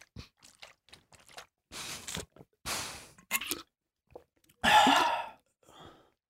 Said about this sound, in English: all right, for this shot, I want you to take a sip of your water, and I want you to do it as ferociously like as possible. Imagine you want everyone else in the room to know you're drinking water.